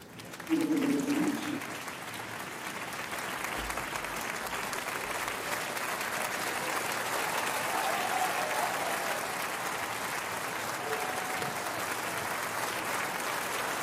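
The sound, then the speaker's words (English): Sustained applause from a large audience at the Cannes Film Festival for Ukrainian president Volodymyr Zelensky, who appears live from Kyiv. A dense, steady wash of clapping lasts about fourteen seconds, swelling briefly at the start and holding loud throughout. “Oh, yes, yes, applaud him.”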